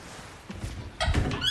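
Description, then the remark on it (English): A kitchen cupboard door, where cat food is kept, opens with a soft thunk, followed by a short, high-pitched creaking squeak from its hinge. No one is talking. “You're about to hear the squeak of the cupboard, which usually signifies Jarvis losing his mind as he knows the cat food is contained within.”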